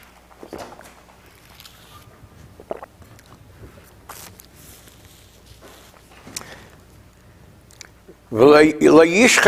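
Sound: sipping tea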